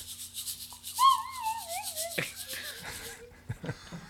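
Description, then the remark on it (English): One performer plays a slide whistle and a shaker simultaneously: the slide whistle swoops down in a wobbly, wavering glide while the shaker rattles along in a steady, quick rhythm, the whistle fading out before a few scattered taps close it. “For the record, he just played a slide whistle and a shaker simultaneously.”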